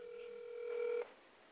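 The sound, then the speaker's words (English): A steady electronic telephone tone on a call-in line, like dialing, holds for about a second at moderate volume and then cuts off abruptly, leaving faint line hiss. “And then the phone.”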